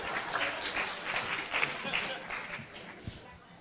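Steady round of audience applause, dense overlapping claps forming a broad hiss of sound that holds for a few seconds before easing off slightly at the end.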